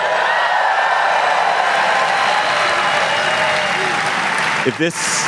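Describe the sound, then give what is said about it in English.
A large live crowd at the Norse Theater in San Francisco applauds and cheers loudly and steadily, a dense wash of clapping and whoops that holds for several seconds before a voice cuts in near the end. “As you can hear, we are live.”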